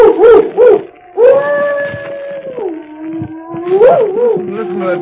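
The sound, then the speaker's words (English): A dog howls at night during a thunderstorm, opening with two short yelping bursts, then a long sustained howl that sags in pitch before rising again into rough, agitated cries. “Listen to that dog. He's in an ugly temper.”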